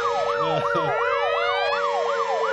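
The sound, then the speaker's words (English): A loud warning siren rapidly swoops up and down in pitch, cycling several times a second in an unbroken, insistent electronic wail with no voices. “Warning. A C-bomb has been dropped. I repeat. A C-bomb has been dropped. This is not a drill.”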